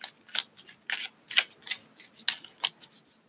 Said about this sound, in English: All right. Shuffling for a few more cards.